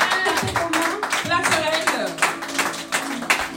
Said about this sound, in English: Oh, that's a good place to put your hands together. Clap those hands like they are yours. Put your hands together.